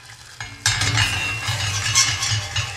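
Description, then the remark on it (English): Cream is poured into hot reddish-brown caramel in a high-sided pan. After a brief quiet start, a loud, steady sizzling hiss erupts and churns on, with a low bubbling rumble and a faint clink of utensils. “So I'm pouring the cream in.”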